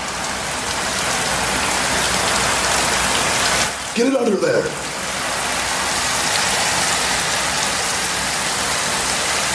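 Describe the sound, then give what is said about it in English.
Water gushes from a tap in a locker room in a steady, loud hiss that runs the whole time, with a man's brief spoken line cutting in partway through. “Turn on the water. Fill it up.”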